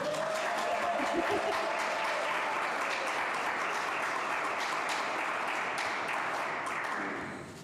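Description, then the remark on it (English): An audience applauds WESL's senior leader, the speaker's wife, who is about to read the story 'Kind Like Marsha' by Sarah Prager. The applause is a dense, even wash of many hands clapping at once that holds its level for several seconds and then tapers off near the end. “Can we clap for my wife real quick?”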